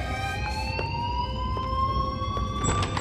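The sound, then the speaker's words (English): A school fire alarm blares continuously, a shrill, steady electronic tone that creeps slightly upward in pitch, with faint rhythmic clicks beneath it and no one speaking. “I was gonna shoot up the school as a sacrifice to him, but you threw the alarm and everybody got out.”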